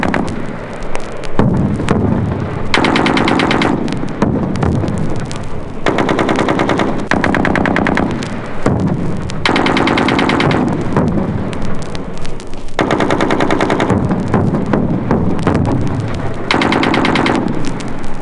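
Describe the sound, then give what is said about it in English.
Sustained bursts of loud machine gun fire rattle in repeated volleys separated by brief pauses, with booming explosions mixed in, on a military infiltration training course where trainees low crawl through barbed wire and sand with bullets inches overhead; dense and harsh throughout with no voices. “The trainee low crawls through barbed wire, sand, explosions, and machine gun bullets inches overhead.”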